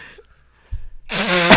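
A fart noise made with the hands: a soft low thump, then a loud, buzzy, sputtering blast about half a second long, recorded close up with no talking.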